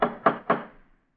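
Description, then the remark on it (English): Three quick, heavy knocks from a fancy metal door knocker, each a sharp clank that rings briefly against the door before fading into silence. “Funny they'd have a fancy door knocker like this way up here.”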